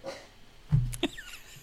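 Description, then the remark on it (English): A dog barks a couple of times in quick succession, short sharp yaps at moderate volume with a faint whine between them, with no one talking. “He, like, starts barking and then just runs the fuck out the room.”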